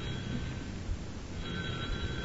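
A telephone bell rings steadily for the whole stretch, a sustained shrill jangle over low background noise, growing slightly brighter toward the end, with no one speaking.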